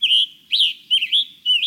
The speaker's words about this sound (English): Songbirds, like the scarlet tanager and hooded warbler we've been hearing, birds that migrate long distances need to complete this process on a tight schedule.